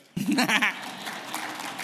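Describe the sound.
Audience applause bursts in suddenly and holds as a steady, dense wash of clapping, with a short voiced cheer or call rising over it at the start.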